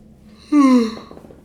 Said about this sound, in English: Ugh. And that's a yawn, dude. That's a yawn at the 40-minute mark.